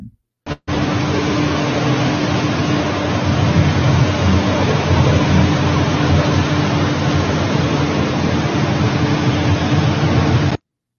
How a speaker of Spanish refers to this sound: ¿Ustedes saben qué cosa es esto? Esos son drones volando, fumigando en la ciudad, arriba de la gente. Y no se sabe ni qué es lo que están echando.